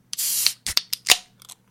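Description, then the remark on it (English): A nitrogen can of Guinness is cracked open with a sharp hiss of escaping gas, followed by several shorter fizzing bursts and a faint crackle as the foam settles, fairly loud. “If the nitrogen can absolutely consumes me, I'm sorry. Well, that's probably fine. Let's crack it.”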